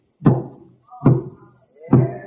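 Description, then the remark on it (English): Three heavy, hollow knocks imitating a knock on a door, evenly spaced about a second apart, each ringing briefly before fading, loud, with no talking. “And Ziba gets off and walks across an unkept yard, steps up on a porch most wasted away, and knocks at a door that may hang on one hinge.”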